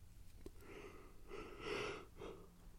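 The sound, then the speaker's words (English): A drawn-out, breathy yawn swells over a couple of seconds and trails off in a softer exhale, fairly quiet, with no talking. “And I apologize for the yawn, but I just tried doing this.”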